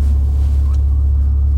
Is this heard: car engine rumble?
yes